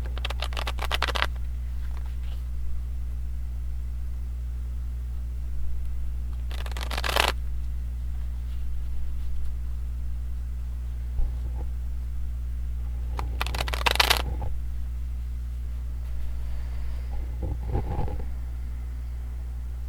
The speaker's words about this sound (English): I'm going to shuffle the cards here and prepare them, and we'll be back shortly.